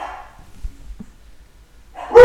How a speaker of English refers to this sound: My dogs are barking.